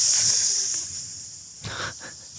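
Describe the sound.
A person imitates a snake with one long, steady hiss, fairly loud, holding the breath out continuously and fading only slightly toward the end.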